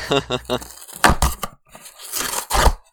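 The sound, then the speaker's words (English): A brief voiced sound, then a cardboard box opening Foley effect: loud papery rips and crinkling scrapes in two bursts, the second longer and rougher than the first. “No, it's cardboard box opening Foley effects.”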